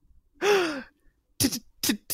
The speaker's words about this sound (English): gasping.